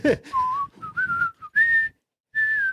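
A person whistles a short tune, several clear sustained notes rising and falling, with brief breaths between phrases and a pause before the final held note.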